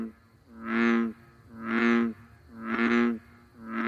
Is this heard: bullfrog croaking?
yes